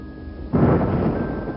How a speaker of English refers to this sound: As we continue, the sky goes from dark to darker, rolling clouds streaked with flashes of neon greens and blues. The rumbling thunder is just the soundtrack to a life in a new world.